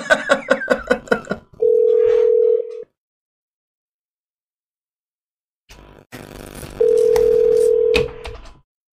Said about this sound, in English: Okay, I'm going to dial her up right now.